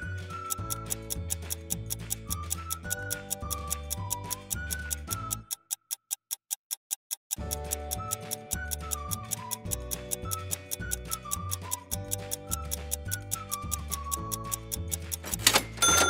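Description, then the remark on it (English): A 15-second countdown clock ticks steadily and briskly over a tense music bed, the ticking briefly standing alone for a couple of seconds midway before the music returns. “Your 15 seconds on the clock start now.”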